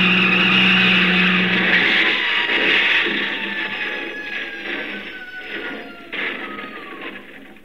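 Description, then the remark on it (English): A car engine roars loudly as a woman drives at a pedestrian, trying to run them down, its whining pitch sliding steadily downward as it speeds past and gradually fades away. “Then I realized she was trying to run me down.”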